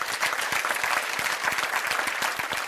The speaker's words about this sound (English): Is that the best clapping y'all can do? I think you can clap better than that.